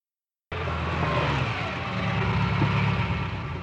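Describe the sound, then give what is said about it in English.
After a brief silence, a car engine cuts in loud and close, a steady throaty rumble with broad road noise that holds evenly for a few seconds, as if a sports car is rolling up nearby. “Magnum and Alice pull up in the Ferrari to Rick's club, and they are met by a boisterous valet.”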